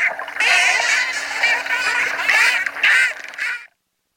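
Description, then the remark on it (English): Dolphins chatter in a dense, loud stream of high squeaky whistles and buzzy squawks that overlap for about three seconds before cutting off abruptly, with a faint steady hum underneath. “That's the sound of dolphins explained by How on Earth's Jim Pullen.”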